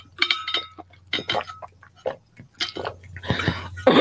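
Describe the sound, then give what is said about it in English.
Glass clinks and rings against something hard, followed by a rushing splash like water being poured as someone gets a drink of water. The moderately loud handling sounds come in short bursts with a low background hum. “sorry, let me get some water. 1 second.”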